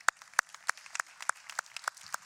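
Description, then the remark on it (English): Congregation applause, heard here as a fairly quiet, steady run of distinct claps at an even, brisk pace, with no voices over it. “You can applaud.”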